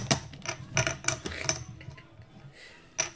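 Poker chips banged on a table during a card game while the dealer shuffles: they clack sharply in quick, uneven bursts, about six loud clattering hits with a bright clicky ring, then a pause before one final knock.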